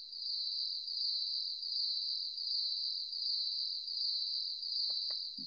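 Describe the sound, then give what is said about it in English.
A dense, steady chorus of crickets chirping in a shrill, continuous trill with a gentle pulsing rhythm. A couple of faint soft clicks come right at the end, and nobody speaks. “Dead silence. Crickets.”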